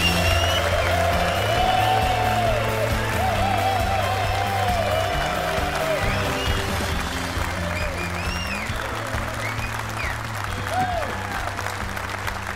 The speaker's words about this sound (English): Wow. Wow. It's just spontaneous applause here at the Walk Worthy Men's Conference. There wasn't staff up front waving everybody to applaud.